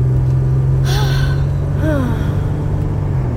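A steady, low engine rumble fills a car cabin while driving, constant throughout, with a couple of brief breathy vocal sounds, like a gasp or sigh, rising over it.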